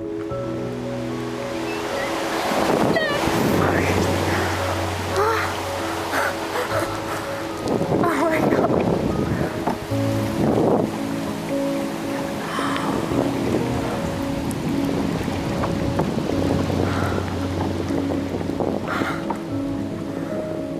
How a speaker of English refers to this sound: If you listen closely to the raw audio there, you can actually hear the sound of the flock swooping by the boat. It's the sound of thousands of starlings in formation, dancing in the sky, a spontaneous formation that is called a murmuration.